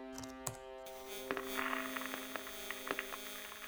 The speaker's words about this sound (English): There was static at first